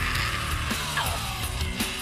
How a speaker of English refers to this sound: He definitely has a strong scream.